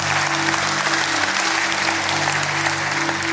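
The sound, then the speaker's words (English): An audience claps steadily, many hands producing a dense, continuous crackle of applause that stays loud and even throughout, with a low steady hum beneath it. “Yes, you can clap.”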